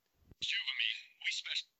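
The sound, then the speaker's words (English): A soft thump, then a bright electronic phone alert sounds in two quick bursts, a longer trill followed by a shorter one, clear, lasting just over a second. “Let's put your phone down.”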